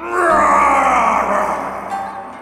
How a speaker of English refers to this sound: The mountain was so high that the villagers never saw the dragon, though they often heard him growl and roar down the steep cliffs and across the craggy ridges.